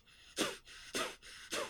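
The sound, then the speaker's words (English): Three sharp, forceful breaths through the nose come in a quick, steady rhythm, each a loud, hissing puff with a brief quieter pause between, from a rapid yoga breathing technique of deep exhales through the nose followed by automatic inhales. There is no talking. “But basically the intention in this practice is you are going to exhale really deeply through your nose like this, and then you are going to automatically inhale through the nose too.”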